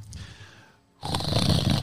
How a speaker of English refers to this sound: I do not snore. Says every man who snores ever. It is a delightful trumpeting in my sleep.